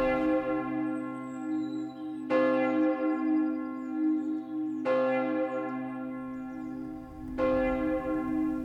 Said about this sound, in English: Hear the tolling of the bells, iron bells. What a world of solemn thought their monody compels. In the silence of the night, how we shiver with affright at the melancholy menace of their tone.